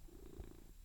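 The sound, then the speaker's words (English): A cat purrs while sniffing a person's hair, a steady low rumble with a soft pulsing rhythm that fills the short moment without any voices. “Yes, that is a cat purring.”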